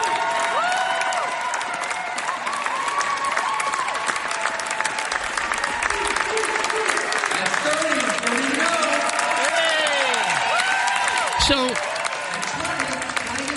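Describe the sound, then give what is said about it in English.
A crowd cheers and claps steadily throughout for a 95-year-old woman finishing a 2K row, dense continuous applause with rising and falling shouts and whoops layered over it, loud and sustained for the whole stretch. “Listen to the crowd get behind her.”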